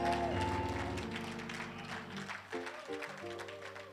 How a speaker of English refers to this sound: Just follow the instruction and flow. Clap for Jesus Christ.